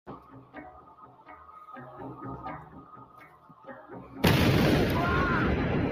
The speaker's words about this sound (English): The explosion seriously wounded him and tore off his fingers.